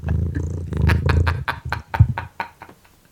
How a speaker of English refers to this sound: Is that your cat? Yeah, can you hear him purring? Yeah, it's awesome.